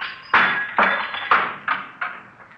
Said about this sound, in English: No, I'll use the handcuffs. See if I can knock a hole in the top half of the window here.